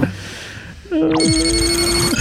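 A starship's electronic incoming hail chime sounds after a moment of low background noise: a sustained steady tone with bright, high harmonics and a sweeping glide, holding for over a second before cutting off.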